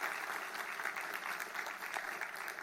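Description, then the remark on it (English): A crowd claps steadily in dense, sustained applause for HSC students, a bright wash of many hands with no pauses and no voices over it. “But those that have got, come on, give our HSC students a great big applause.”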